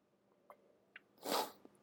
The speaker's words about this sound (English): Let me take a little sip of my vino here.